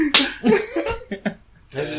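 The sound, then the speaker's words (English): A sharp whip-crack snap rings out, voiced by someone imitating a cartoon whip like the one in Johnny Test, followed by a few short vocal bursts and quick sounds before a brief pause. “Like a Johnny Test whip.”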